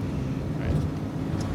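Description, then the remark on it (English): A steady low engine rumble and road noise fill the inside of a moving bus traveling north from New York to Boston, a constant droning hum with faint rattles and a brief higher tone near the end. “We're on a bus.”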